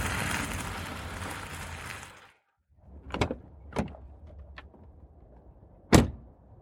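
A pickup truck rumbles and crunches to a halt in front of a barn, falls quiet, then a few sharp mechanical clicks and a loud latch clunk follow as its door is opened.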